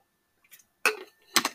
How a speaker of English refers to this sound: So yeah, I'm going to take a swig of water here quick.